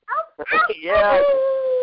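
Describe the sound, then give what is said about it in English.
A young child howls like a wolf or coyote, fairly loud: a couple of short yelping sounds, then one long, steady, drawn-out note held to the end. “can you howl like a wolf or like the coyotes we hear?”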